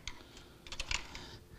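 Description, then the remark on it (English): A pencil scratches across paper in a series of short, uneven strokes, fairly quiet, with no one talking. “Just like that lead working through that pencil, so his Holy Spirit working through our life and being revealed to the world.”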